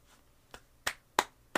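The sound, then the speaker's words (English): One person claps alone, about four or five sharp claps in a slow, fairly steady rhythm, starting soft and getting louder, with quiet gaps between them and no talking. “I'm the only one that's going to clap.”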